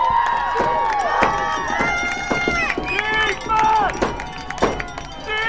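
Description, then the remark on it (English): A large stadium crowd at a football game roars and cheers continuously for the home defense on third and nine, many voices shouting and whooping over one another in a loud, sustained swell with a few sharper peaks of yelling. “Listen to the crowd tonight. The crowd is pumped.”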